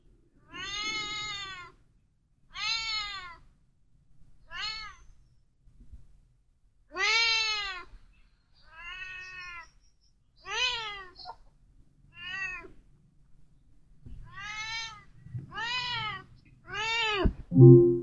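cats meowing

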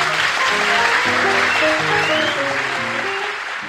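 studio audience applause

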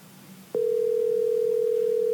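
telephone dial tone

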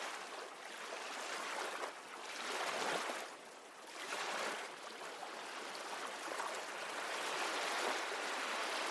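gentle ocean waves lapping

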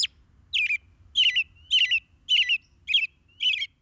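american robin song

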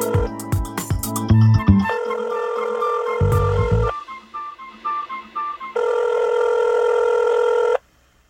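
telephone ringing

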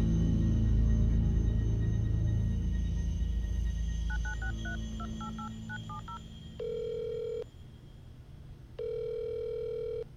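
telephone keypad dialing tones

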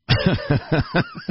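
coughing fit

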